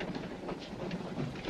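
A train rolls steadily along the rails, a continuous low rumble with a broad rushing noise and faint rhythmic clatter, even in loudness, with no voices.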